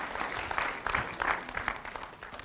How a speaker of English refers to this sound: Yeah, you can clap for Jesus on that.